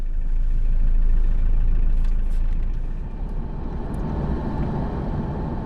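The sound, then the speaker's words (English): A steady, loud low rumble of a car engine and road noise, heard from inside the moving car on a Saturday morning in March, driving out of Reykjavík, Iceland, through Hafnarfjörður toward Grindavík, easing slightly partway through and then holding even, with no voices. “We start this episode by getting in the car on a Saturday morning in March.”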